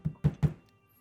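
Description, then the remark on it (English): Three quick, solid knocks on a wooden door in an even rhythm, fairly loud, each with a low thud, followed by quiet room tone. “actually, you hear a knock on your door.”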